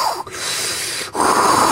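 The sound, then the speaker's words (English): Loud, exaggerated nasal breathing, a brief sniff followed by a long airy rush and another breath with a faint whistly edge, as if air is rasping through nose hair. “In the day, and then I'm breathing and it's like.”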